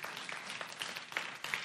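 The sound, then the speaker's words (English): A church audience applauds steadily for the Arizona Lutheran Academy girls volleyball team, which won the Division 5 state championship. Many hands clap in a dense, crackling wash of sound at a moderate level with no one speaking over it. “So that was, we can clap for them too, just to make sure you're.”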